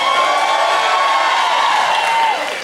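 An audience claps their hands for Jesus and shouts unto God together in a loud, steady roar of applause and raised voices, one voice holding a long high note, before the noise drops off at the end.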